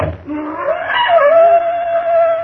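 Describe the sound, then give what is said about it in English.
A trained black panther's drawn-out scream: a wavering, high-pitched wail that rises, then holds a long, steady piercing tone, loud and alone over a faint low rumble. “Prophet, why do the panthers scream?”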